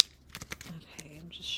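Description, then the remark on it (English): Quiet, papery flicks and soft crisp rustles of a deck of cards held in the hand being shuffled before pulling cards for a reading, coming in quick uneven bursts, with a faint breathy voice murmuring underneath. “With all that being said, all that fun heaviness out of the way, what we're gonna do now is I've got my cards in my hand.”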